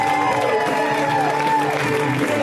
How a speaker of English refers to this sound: So, ladies and gentlemen, please, a round of applause for the Sklar Brothers. Let's hear it right now.